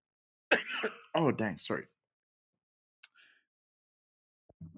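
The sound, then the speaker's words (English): A fairly loud coughing attack of several harsh coughs in quick succession, then a pause and a single short, quieter cough before a faint sound at the end. “Oh, you're getting one of those cough attacks again by the looks of it.”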